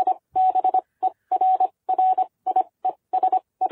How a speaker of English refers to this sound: Well, Morse code.